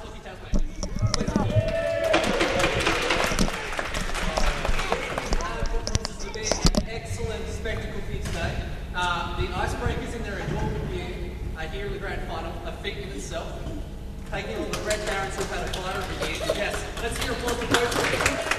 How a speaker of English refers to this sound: Crowd cheering for the Red Barons, mainly, I think.